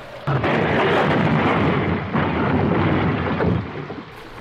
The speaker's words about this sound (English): Don't be frightened, Dale. The plane has crashed. We're safe.